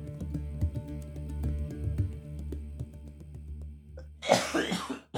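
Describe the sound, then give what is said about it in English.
A steady, tonal humming background runs for several seconds before a loud burst of coughing breaks in near the end, harsh and brief. “Yeah, get that saucy coughing audio in there”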